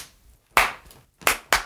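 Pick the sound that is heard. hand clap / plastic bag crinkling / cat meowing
hand clap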